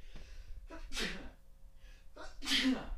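sneeze

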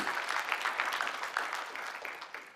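audience applause

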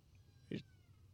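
cat meowing

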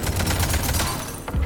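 video game gunfire

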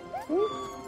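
cat meowing

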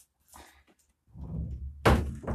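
door being closed

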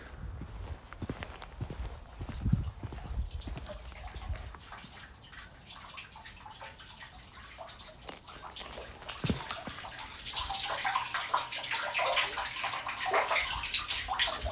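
water running

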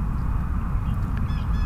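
bird calls

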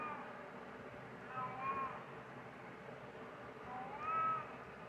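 cat meowing

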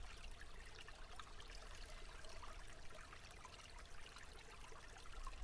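babbling brook water flowing

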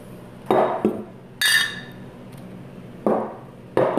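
glasses clinking together

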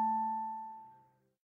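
telephone ringing

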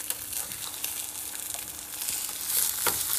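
egg frying

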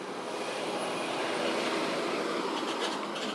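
truck driving past

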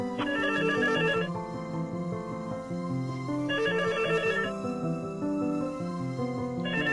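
phone call ringing

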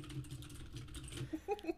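computer keyboard typing

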